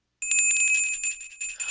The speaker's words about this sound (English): Oh, it's a Salvation Army bell.